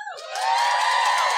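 An audience cheers and whoops, a dense wash of high excited voices that swells after a brief start and holds at a steady, loud level with no talking over it.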